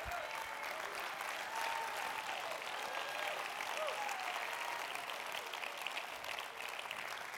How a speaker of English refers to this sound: I still can't get everybody clapping their hands.